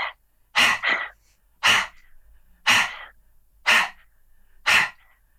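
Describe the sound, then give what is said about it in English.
A dog lets out about six short, sharp barks or huffs in a steady rhythm, roughly one per second, with quiet gaps between and no one talking. “Yeah, he's such a, told you, he's the chillest, coolest dog.”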